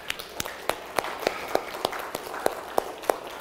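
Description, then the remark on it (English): A church audience gives a round of applause after a prayer, clapping together in rhythm: steady, evenly spaced claps, about three a second, sharp and moderately loud over a soft background murmur. “I don't know who that's for, but I'm just going to go and give them a round of applause.”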